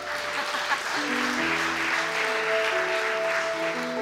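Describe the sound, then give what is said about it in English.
An audience applauds the drama team with dense, steady clapping that holds at an even loudness for about four seconds, while soft sustained musical notes play underneath. “Round of applause for the drama team.”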